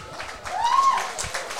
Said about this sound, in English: Getting a healthy round of applause.